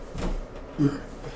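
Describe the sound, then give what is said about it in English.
A door creaks, opening with a soft knock followed by a short, groaning squeak from its hinges, with no one speaking. “This creaky ass door.”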